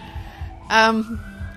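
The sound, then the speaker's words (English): Emergency vehicle sirens sound outside as they pass, a short loud wailing burst that trails into a thinner rising tone, heard over a steady low rhythmic thumping. “there go the sirens every single time.”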